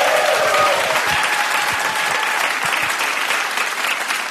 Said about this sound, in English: Give a round of applause.